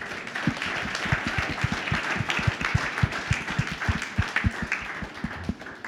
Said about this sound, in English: First of all, give yourselves a round of applause.